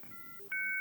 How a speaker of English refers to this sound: Anybody remember that sound? Yes. Mags? Does that sound familiar? Yeah, it's a dial-up modem. That sound always takes me back to Mexico.